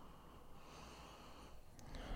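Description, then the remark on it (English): Quiet nasal sniffing at a cup of hot coffee, a steady breathy inhale drawn through the nose over a couple of seconds, with a faint airy hiss and no talking. “I mean, just give it a sniff. It's hot.”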